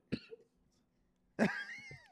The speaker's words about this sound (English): Yo, y'all gonna get me sick, bro? Nah, both of y'all coughing.